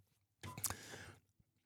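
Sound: sipping an energy drink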